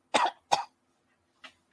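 A put-on, theatrical cough: two loud, harsh bursts in quick succession, then a softer third cough after a short pause, with no talking.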